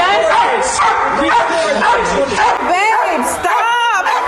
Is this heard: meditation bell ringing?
no